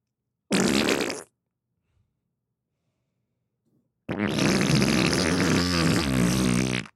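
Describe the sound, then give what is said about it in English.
A person blows a wet, sputtering raspberry with the lips, a bilabial fricative imitating a wet fart: one short burst, a pause, then a longer, louder, flapping one. “You've just described a wet fart to me, so I thought I'd describe one back.”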